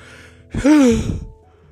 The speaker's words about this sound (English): Oh, God. It is the yawn from Tuesday.